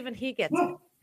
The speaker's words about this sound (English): I don't, was that your dog? Exactly. That's my dog.